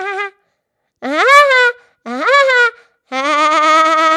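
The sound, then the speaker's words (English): A voice imitates a woodpecker in four loud, high-pitched vocal bursts with rising, wavering tones and short silences between them, the last one a longer, trilling call. “That's a woodpecker.”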